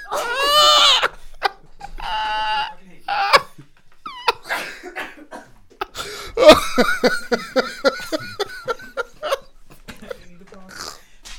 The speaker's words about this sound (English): Yeah, that was a series of sneezes.